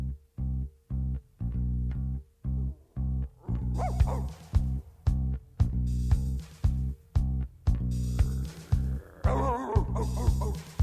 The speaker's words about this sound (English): what are you barking at? What do you see?